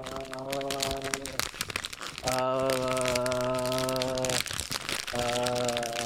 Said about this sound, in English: I'm opening a bag. Of Cheetos?